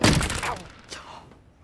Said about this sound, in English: Okay, just a few more steps. Then he runs into the door.